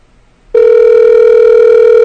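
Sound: skype call dialing tone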